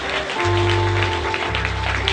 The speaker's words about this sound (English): We give those 9 guys a round of applause. God bless you.